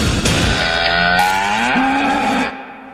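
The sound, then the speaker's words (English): A cow moos loudly, one long drawn-out call that bends slightly in pitch before cutting off, with no one talking. “Oof, a bitter cow.”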